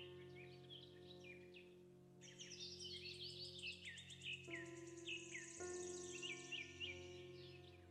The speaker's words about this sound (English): all the sounds of birds, of the wind in the trees.